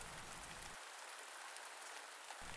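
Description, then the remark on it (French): Steady, dense patter of rain drumming on sheet metal above a backyard, a continuous hiss of countless drops with no pauses and no voices, the low rumble briefly thinning partway through. “regardait fixement la pluie battant la tôle au-dessus de l'arrière-cour.”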